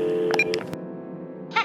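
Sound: telephone dialing tones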